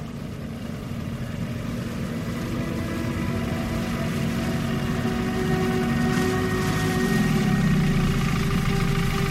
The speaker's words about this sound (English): The low hum of the engine slowly died down as my wooden boat made it to the middle of the lake.